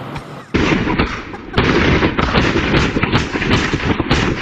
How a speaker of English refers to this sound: One resident compared it to a war zone on New Year's Eve and also 4th of July. We talked with another resident who said he's constantly catching illegal fireworks going off on his home surveillance.